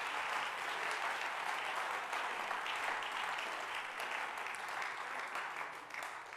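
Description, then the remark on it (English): A church audience claps their hands to the Lord steadily for several seconds, a dense wash of many hands at a fairly even level before tapering slightly at the end. No one speaks. “Can we clap our hands to the Lord?”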